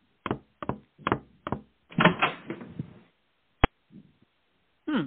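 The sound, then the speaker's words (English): Four sharp knocks on a wooden door, then a rattling creak as a woman works the closet door open, ending in a crisp latch click and a few soft thumps. “Tanya opens the closet door and finds Mr. Pinscher unconscious.”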